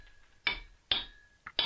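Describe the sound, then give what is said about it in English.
Someone hammers a stake into the ground at Springtown, directly into underground hot springs, with four sharp, loud strikes in an uneven rhythm, one lighter tap among them. A faint high metallic ring lingers between blows. “hammer that stake into the ground.”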